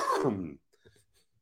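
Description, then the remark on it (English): A single loud cough with a rough, throaty edge, lasting about half a second, followed by faint rustles and quiet breathy sounds. “Thank you for letting me cough, but I didn't ask you.”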